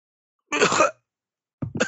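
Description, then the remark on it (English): A voice imitates a woman's wet, sputtering cough as she coughs up water: one harsh burst, a pause of silence, then another gurgling cough starting up, fairly loud with no speech. “And she starts to cough up water.”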